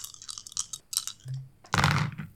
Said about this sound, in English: Oh, dropping dice over here.